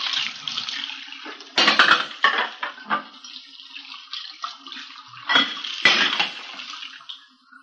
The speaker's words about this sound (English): We found her in the kitchen washing dishes. I just got a couple more to rinse.